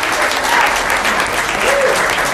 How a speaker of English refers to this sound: Also, one final round of applause